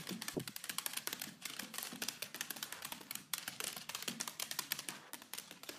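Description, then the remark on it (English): Rapid, irregular clicking taps of Buddy the dachshund's paws on a hard floor, dozens of sharp ticks in quick uneven bursts, fairly loud and alone without any talking. “For example, here's one of Buddy's tap dance routines.”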